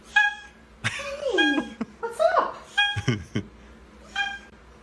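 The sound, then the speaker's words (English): A cat lets out several short, nasal honks instead of meows, spaced across a few seconds, with a person's voice chattering softly between the calls. “This is the sound of a cat honking.”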